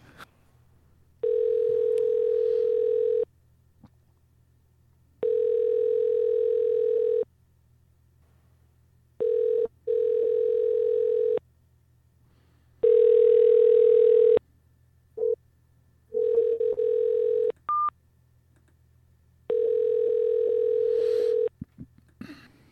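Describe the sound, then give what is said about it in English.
A phone call to a woman rings out unanswered: about six steady, buzzy ringback tones, each roughly two seconds long, repeat with even pauses between them, and nobody picks up or speaks. “All right, she's not answering.”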